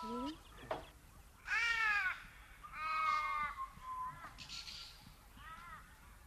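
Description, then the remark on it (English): Crows caw repeatedly outdoors, a series of harsh, drawn-out calls at irregular intervals, fairly clear, over a faint background hiss. “They're ominous, the crows. Are they here for the sheep?”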